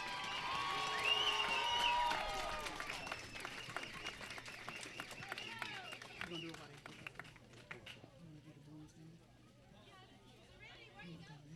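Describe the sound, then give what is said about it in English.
Loud crowd applause and cheering with whistles and shouts for the 2022 seniors standing on a field, strongest in the first few seconds, then fading to scattered clapping and chatter from a large gathering outdoors. “Now, if everyone will please give a big, huge round of applause for our seniors for 2022.”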